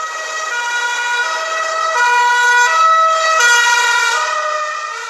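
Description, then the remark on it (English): A loud ambulance siren wails in a mostly empty city during a disease outbreak, stepping back and forth between two pitches in a steady repeating pattern over faint traffic rumble, with no one speaking. “The sirens of the ambulances here are pretty much every 5 minutes.”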